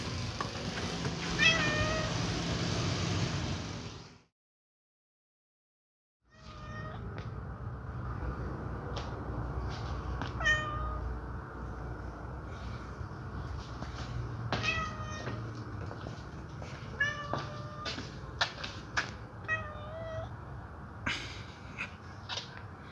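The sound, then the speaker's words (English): A small cat meows repeatedly in short, high-pitched cries over a steady background hum, with a brief silent gap near the start. “Hello, yes, I'd like to report the smallest cat.”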